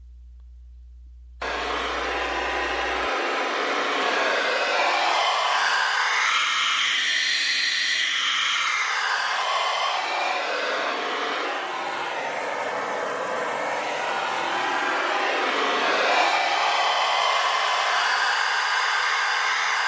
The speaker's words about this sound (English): Maybe you'll get some kind of a feeling by hearing this tone created by a $100 US bill. Anyway, here it is.